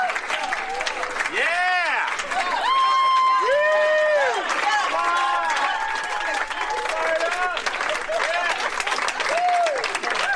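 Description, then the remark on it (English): Loud, sustained applause from a large crowd in a Twitter video of Doug Emhoff, Kamala Harris's husband, fills the whole stretch, dense and continuous, with cheering and excited voices rising above the clapping throughout. “Those are the clapping seals.”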